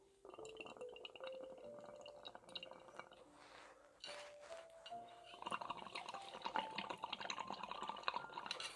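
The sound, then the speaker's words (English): Mint water trickles and gurgles into a glass, its pitch rising steadily as it fills, with light clinks of glass and no talking over the continuous liquid sound. “Just sip on some mint water and try to cleanse my brain palate, I don't know.”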